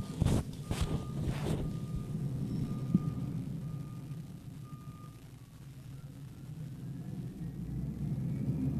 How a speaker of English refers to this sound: And, well, you heard that? Garbage trucks are honking in real time, in real time. Hold on, let me see if we can capture this audio.